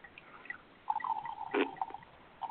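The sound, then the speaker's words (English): A thin stream of wine trickles into a glass for about a second, with a faint ringing tone and a brief splashy burst, quiet, no voices. “Pour some in the glass like you're here.”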